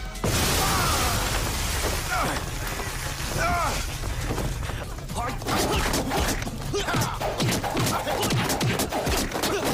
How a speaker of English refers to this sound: Dude, that explosion, man. That was insane. Oh my goodness.